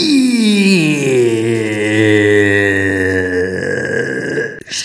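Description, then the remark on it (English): A single long, loud burp drawn out for nearly five seconds, starting higher and sliding down into a steady low rumble before cutting off abruptly. “There's a kiss connection with the burp.”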